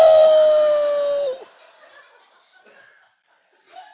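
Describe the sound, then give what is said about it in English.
A person imitates a wolf howling: one loud, sustained vocal note lasting over a second that slides slightly downward, then cuts off into near quiet with faint rustling. “In my mind, I could hear the wolves.”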